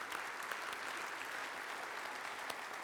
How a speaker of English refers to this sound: Would you give them a round of applause again as those who are most responsible here for Praise, where we are today in the financial history and just in the history of this church.